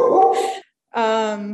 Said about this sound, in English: It's totally cool. We love a good dog bark.